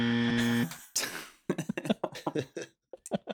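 signal or alarm, game show buzzer pressed

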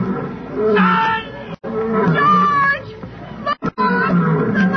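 animal, lions roaring

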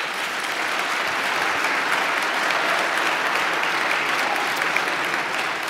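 crowd, audience applause

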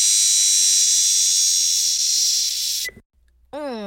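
insect, cicada buzzing

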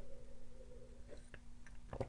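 food or drink, sipping tea

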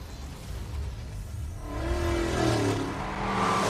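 vehicle, car engine revving

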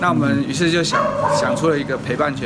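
animal, dogs barking and yipping

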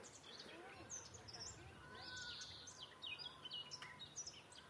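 bird, garden warbler song

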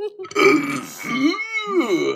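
human body sound, burp

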